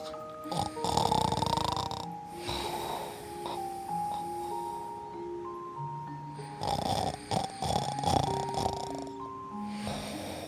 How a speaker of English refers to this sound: Dora, you were snoring very loudly.